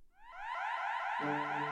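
An emergency cell bell in a Nottingham prison, rung by a prisoner's cellmate in September 2017, sounds as a loud electronic alarm, a rapid series of rising whooping sweeps that settle into a steady, harsh, continuous tone, with no one speaking.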